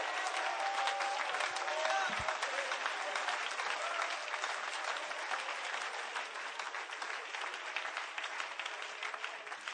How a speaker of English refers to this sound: Hallelujah. Come on, clap your hands and thank God for the covering in your life.